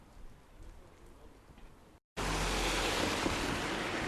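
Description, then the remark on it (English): Outdoor riverside ambience beneath one of the big arches of Tower Bridge: a soft, steady wash of water and wind, then after a brief cut a much louder rushing roar fills the space. No one speaks. “I'm dripping wet, and I'm underneath one of the big arches here on the Tower Bridge.”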